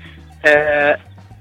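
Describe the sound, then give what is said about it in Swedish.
A bird calls once behind a man out feeding his pigs, a loud, strained, nasal cry lasting about half a second, rising abruptly over a low steady hum and cutting off sharply. “Det låter som en fågel bakom.”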